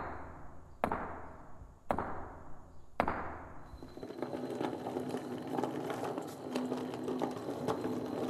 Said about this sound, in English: We're there. Where? Home. But it's just a rocky hill. You watch. We knock on this rock and...